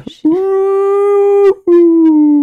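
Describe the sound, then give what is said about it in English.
A person mimics whale song with a long, steady, moaning hum, pauses briefly, then holds a second slightly falling note, loud. “You like my whale sounds? That lull you to sleep?”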